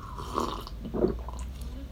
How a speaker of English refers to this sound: Today we are so very, very lucky to be having coffee, cue slurping noises.